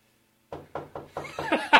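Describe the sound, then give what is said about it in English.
A series of about seven knocks on a door after a brief silence, coming in a steady rhythm and growing louder and more insistent toward the end, with no one speaking. “So in the midst of the Norman invasion, you hear on your door.”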